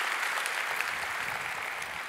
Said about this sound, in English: You can clap right there. That's a great point right there.